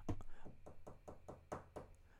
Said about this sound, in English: Suddenly, I heard a tapping sound upon my window. The sound grew louder with each tap.